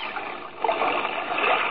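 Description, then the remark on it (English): A sudden splash as a person falls overboard from a boat into water, followed by steady churning and sloshing that continues, with no voices. “Man overboard! Man overboard!”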